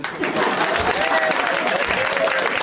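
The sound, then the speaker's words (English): A crowd claps steadily, a dense, loud wash of applause lasting a few seconds with some voices mixed in, sustained without a break, the audience voting by applause on whether Donald Trump has a small penis. “By a round of applause, how many of you guys think Donald Trump has a small dick?”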